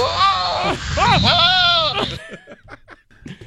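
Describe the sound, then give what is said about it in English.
A loud, wavering goat bleat made during mating, lasting about two seconds, with quivering harmonics that swoop up and down, cutting off abruptly before soft speech-like sounds follow. “Goat mating is now number one in the animal rating power rankings.”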